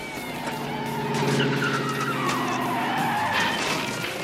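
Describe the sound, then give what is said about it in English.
A Firebird car roars up with engine noise and a long, high squeal of skidding tires that bends in pitch, loud and steady for a few seconds with no one talking. “comes pulling up in I think it's an IROC.”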